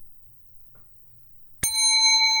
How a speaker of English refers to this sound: I reluctantly ring the bell.